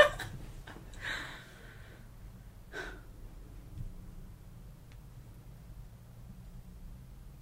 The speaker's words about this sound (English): I don't like that I can hear them breathing this much. And I don't like the lip smacking sounds either. It's almost ASMR. You think that's added in post?